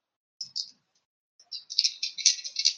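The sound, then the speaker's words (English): Dice rolling on a dice tray, landing three 16s in a row: a short clatter, a brief pause, then a longer run of quick, bright clicks and rattles, with no voices. “That was 3 16s in a row on the dice floor.”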